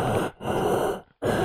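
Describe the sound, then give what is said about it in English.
A person imitates heavy, Darth Vader-like respirator breathing: loud, rasping, hissy inhales and exhales in a slow rhythm, roughly three breaths separated by brief silent gaps. “there was a point where I thought I was sitting next to Darth Vader because all I could hear was like.”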